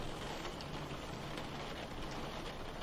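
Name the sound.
rain falling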